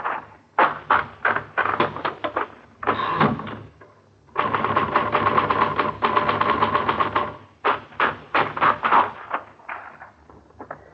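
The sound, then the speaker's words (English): Typewriter keys clack in quick, uneven bursts with short pauses, then a long unbroken run of rapid strikes before choppier bursts return. A typewriter is being tested against a forged letter in a police forgery division. Loud, sharp mechanical clicks with no voices. “Now, let's check it against the forged letter. The capitals print evenly.”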